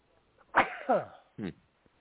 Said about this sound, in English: We are finna sneeze again.